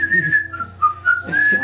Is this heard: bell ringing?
no